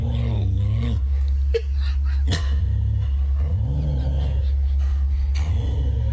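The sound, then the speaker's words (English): A dog barks and growls in a few sharp bursts and drawn-out vocal sounds in a video of the challenge where owners bark at their dog to see how it reacts, heard over a steady low rumble as if played on a speaker. “Bark at your dog and see how they react.”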